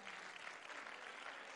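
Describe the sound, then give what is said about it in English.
A church audience claps hands to the Lord in praise, a steady, dense wash of applause that holds at an even level for the whole moment, with no voices standing out. “Oh, come on, let's clap our hands to the Lord.”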